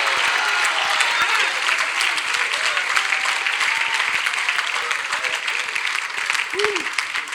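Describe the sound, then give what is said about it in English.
An audience claps their hands to magnify the Lord, sustained, dense applause for about seven seconds, loud and steady, with a brief voiced shout rising near the end. “Clap your hands and magnify the Lord.”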